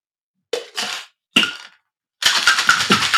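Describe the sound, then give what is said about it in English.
A cocktail shaker filled with plenty of ice, after a dry shake: a few short rattling bursts, then a steady, loud rhythmic shaking with sharp clicks of ice against metal. No voices. “Whenever I hear a cocktail shaker, I'm like, huh? Where?”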